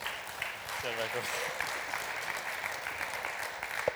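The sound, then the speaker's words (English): An audience claps and cheers steadily and densely for a speaker for several seconds, a bright, even wash of applause with a brief voiced cheer rising out of it early on. “We're chanting for him, we're cheering for him, and we just know that this word's going to encourage us and change us, Father.”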